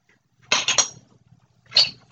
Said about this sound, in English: He slammed the book down. Why? Because my page is warping. I didn't want to apply pressure on it, so it doesn't warp.